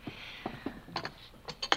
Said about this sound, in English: If you'll open the door. Sure thing.